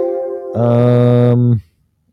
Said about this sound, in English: And the phone rings, so I gotta answer that. All right, I had to answer the phone there.